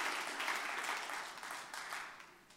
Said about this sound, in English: Give the Lord a good hand clap of praise as you're being seated.